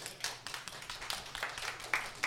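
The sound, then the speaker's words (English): An audience claps together in answer to being asked who has been at a drive-thru after midnight in the past two months, a dense, irregular patter of many hands at moderate volume that holds steady for a couple of seconds, with a few sharper claps standing out near the end. “Like there's, I don't know, by round of applause, how many people here have been at any drive-thru after midnight in the past, I don't know, 2 months?”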